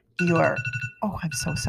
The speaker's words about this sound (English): To pay attention to your true self, as the alarm so eloquently allowed us to emphasize, is self-care and also soul care.